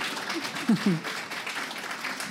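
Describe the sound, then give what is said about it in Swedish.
An audience applauds in a dense, steady wash of clapping that carries on for the whole stretch, with a couple of brief voiced shouts or cheers rising out of it near the start. “Det var största applåden.”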